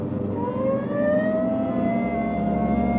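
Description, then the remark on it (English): A police car siren winds up in a loud, continuous rising wail over a low engine rumble, steady throughout with no talking, as the police car responds to a call of a woman screaming at 420 St. John's Place. “Hit the siren.”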